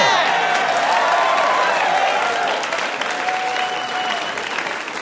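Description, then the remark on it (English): A large audience claps loudly and steadily, with whoops and cheers rising above the dense applause throughout, easing only slightly toward the end. “They were really cheering for Saint elsewhere.”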